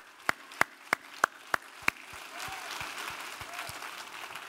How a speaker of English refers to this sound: Come on, let's give the Lord a clap offering today.